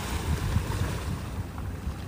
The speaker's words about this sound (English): I wish y'all was here to feel this wind on these waves, because it's perfect.